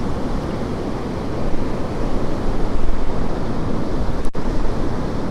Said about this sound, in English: As per usual, it's pretty windy in Woolacombe. I've got a bit more shelter on Puttsborough Sands.